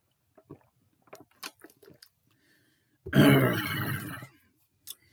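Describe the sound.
A few soft mouth clicks and smacks, then a person lets out one loud, rough, throaty growl lasting just over a second, followed by a brief click.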